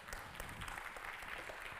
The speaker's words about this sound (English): Can we give our praise team another round of applause, please?